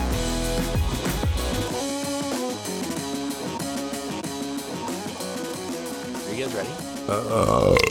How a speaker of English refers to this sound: There, I burp this time.